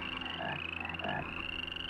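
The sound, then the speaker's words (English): A dense chorus of frogs swarming a Pharaoh's house, some on a couch, croaking continuously, many overlapping calls with a steady pulsing rhythm, moderately loud, with no voices present. “Clean these things out of here. They're on my very couch. I'm going mad from their croaking.”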